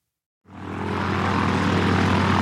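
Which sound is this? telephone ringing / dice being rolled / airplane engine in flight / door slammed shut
airplane engine in flight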